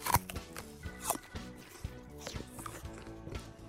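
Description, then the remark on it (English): A crisp crab apple is bitten with a sharp crunch, then chewed with a second crackly crunch and softer wet chewing, all over a steady tonal background. “I know what? You're chewing. I'm chewing.”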